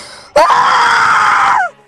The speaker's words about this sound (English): screamed loudly as dark blood began to spray.